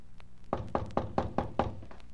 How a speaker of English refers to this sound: I walked up the stairs and knocked on the front door, never expecting an answer.